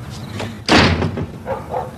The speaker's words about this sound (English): Goes to Winnie's house and she slams the door in his face.